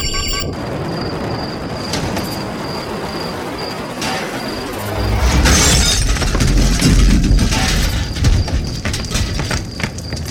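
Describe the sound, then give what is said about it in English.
A crash of shuttle 237 after it lost its engines: a rumbling roar with a high, steady altitude-warning tone pulsing over it, then a loud impact halfway through brings shattering glass and heavier, louder crashing debris. No one speaks. “We have lost engines and are going down.”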